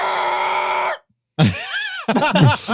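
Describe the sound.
A person voices a long, strained screech imitating a ship grinding to a halt as if its emergency brake were pulled, then after a brief pause adds a wavering, rising-and-falling screech and choppy vocal bursts, loud.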